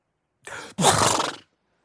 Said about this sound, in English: Hold on. I have to sneeze.